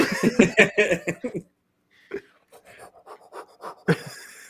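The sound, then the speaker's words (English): A voice imitates quick, rhythmic panting, breathing warm air onto a penis dried out from the cold, a run of about eight breathy huffs. Softer, scattered breaths and short vocal bursts follow after a brief pause. “What if you need the spit to keep it like moisturized because it's dried out from the cold? Breathing on his dick.”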